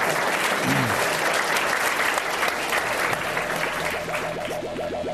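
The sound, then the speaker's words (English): A Climate One conversation audience claps steadily for about five seconds for the guests finishing a lightning round, a dense, even wash of applause with a faint voice briefly audible underneath near the start. “Let's give a round for them getting through that.”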